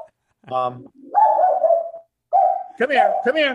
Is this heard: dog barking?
yes